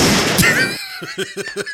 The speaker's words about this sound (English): Gunshots, nigga. There we go. Yeah, that's it.